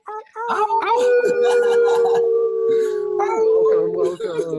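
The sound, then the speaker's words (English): Several people imitate wolf howls with their voices over unmuted microphones during a live broadcast, long sustained overlapping tones that rise and hold, loud, with a few breathy yips and playful vocal noises mixed in. “unmute your microphones, make some noise, guys. Just do a little wolf howls, go.”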